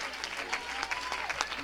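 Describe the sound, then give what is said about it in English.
A church audience at Christian Growth Center claps steadily to give praise to God, many overlapping hand claps forming a continuous, moderately loud patter with a few sharper accents, and faint voices mixed in beneath. “Come on, let's clap our hands and give Him praise tonight.”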